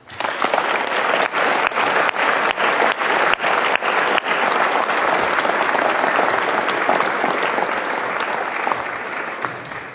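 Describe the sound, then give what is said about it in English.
An audience at a business gathering applauds Minister Brad Duguid steadily for several seconds, a dense wash of clapping with sharp individual claps standing out early, fading slightly toward the end. “So ladies and gentlemen, please join me in a round of applause again for Minister Brad Duguid.”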